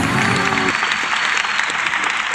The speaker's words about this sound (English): Oh, this applause goes on for a while. That's okay. I'll let it run.